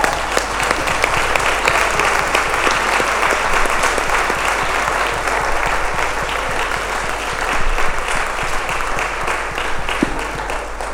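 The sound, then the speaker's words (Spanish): A standing audience applauds for the Lord steadily for about eleven seconds, a dense, loud wash of many hands clapping without pause or any voices standing out. “Vamos a dar un aplauso, Señor, otra vez.”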